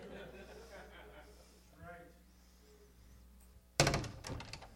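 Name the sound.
door slamming shut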